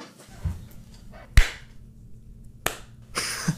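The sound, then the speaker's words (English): Two sharp, loud hand claps a little over a second apart, each a crisp slap over a low background hum, followed by a brief rush of noise. No voices are heard. “Okay, I'm gonna clap. Now you clap.”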